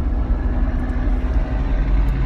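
A big rig truck rumbles in bumper-to-bumper traffic, a loud, steady low engine drone that holds for the whole moment with no one talking.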